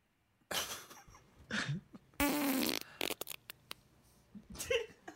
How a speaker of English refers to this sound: Here's the first one. It's called The Wettest of Farts.